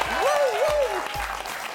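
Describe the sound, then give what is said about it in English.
An audience applauds at the close of a Creative Live show in a steady, dense wash of clapping that holds at full level throughout, with a single voice whooping in a rising and falling cheer over the noise. “Big, big, big round of applause for Brené.”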